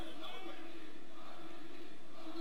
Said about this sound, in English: Tap. Crowd chant. Crowd chanting for RVD to tap out, but no.